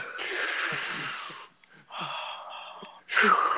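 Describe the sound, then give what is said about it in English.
Loud, heavy gasping breaths, a few long ragged inhales and exhales separated by brief pauses, breathy and strained with no talking. “That's say, yo, you should stop fucking breathing, man. You're sucking up all the goddamn air.”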